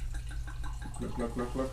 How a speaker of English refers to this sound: So anyway, we're now pouring out a glass of wine.